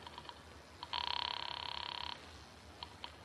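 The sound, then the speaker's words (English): A telephone is dialed with a few quick tones, then rings with one rapid, trilling burst lasting about a second, followed by two more short blips. No one speaks. “So, with my arms still around her, I reached for the phone.”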